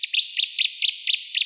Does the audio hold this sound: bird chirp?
yes